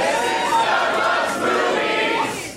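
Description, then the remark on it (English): A festival crowd at Esther's Follies, part of South by Southwest comedy in Austin, Texas, on Saturday, March 11, 2017, cheers and whoops loudly and steadily, a dense wash of many voices with scattered higher shouts rising above it, lasting a few seconds without a break. “That was pretty good for a festival crowd.”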